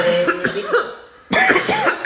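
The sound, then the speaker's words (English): Two loud bursts of harsh, raspy coughing, each a short run of hacking coughs, separated by a brief quiet pause. “No, I'm coughing.”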